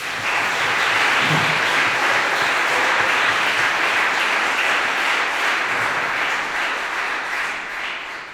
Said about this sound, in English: So please give a very big round of applause for two writers who I couldn't be more privileged to share a stage with, M. John Harrison and Isobel Waidner.